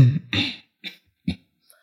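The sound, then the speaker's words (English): A string of about four coughs, the first two harsh and drawn out, then two shorter, sharper ones with brief pauses between. Fairly loud, with no talking. “Who are you coughing for?”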